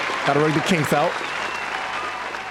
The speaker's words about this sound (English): Man, let's give ourselves a round of applause for finally doing the show. Oh, shit. I got to turn this back up. Do that again. Round of applause. There we go.